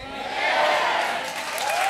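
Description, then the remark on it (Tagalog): Weak, scattered audience applause with a few voices mixed in, holding at a fairly steady, modest level for about two seconds. “Wala, mahina yung palakpak!”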